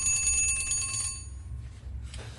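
An antique clock's early alarm mechanism, set by a disc at the front of the dial behind the hands, rings its bell in a rapid metallic clatter for about a second, then cuts off, leaving a faint ringing decay over a low background rumble.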